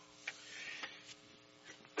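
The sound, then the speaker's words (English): A single loud, abrupt sneeze bursts out at the very end, after a quiet stretch with a few faint clicks over a steady low electrical hum. “Bless you. Excuse me.”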